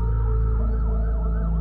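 An ambulance siren wails loudly, its pitch sweeping up and down in repeated swoops over a steady low engine rumble, with no voices.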